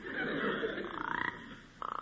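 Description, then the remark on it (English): A frog croaks in quick, pulsing trills: two short bursts of rapid rattling croaks, fairly loud, from near a rock, with no voices over them. “What's that? It's a frog.”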